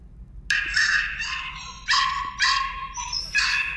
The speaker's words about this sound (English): Oh, he's sleeping. Sometimes he barks in his crate and I was going to turn the speaker on so that everyone could hear what I've been going through. Wait, I think he's barking.